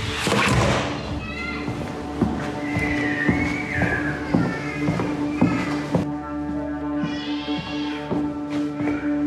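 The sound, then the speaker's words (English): Several dull, irregular knocks thump against a door, set over a steady background hum with some faint, high wavering tones in between. “Knock on the door?”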